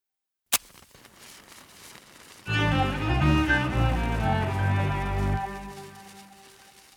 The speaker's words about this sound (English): Somewhere along the shore, someone set off fireworks.